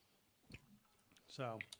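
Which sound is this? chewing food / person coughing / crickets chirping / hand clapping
chewing food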